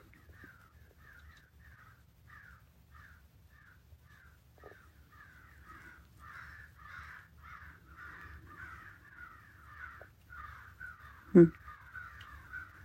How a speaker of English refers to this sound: And I hear the crows now.